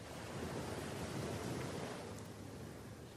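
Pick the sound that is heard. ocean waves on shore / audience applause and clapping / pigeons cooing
ocean waves on shore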